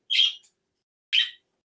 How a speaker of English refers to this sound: Chirp. Is what it is.